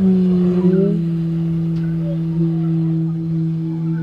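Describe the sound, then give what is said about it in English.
A fire organ, a rig of panpipes mounted on a wheeled cart and heated by a propane torch, built by Antoinette Jacobson of Norwich, Vermont, sounds two low, steady tones together, a deep hum beneath a slightly higher drone, sustained and loud for the whole stretch with faint wavering and no voices. “It's a fire organ built by Antoinette Jacobson of Norwich, Vermont.”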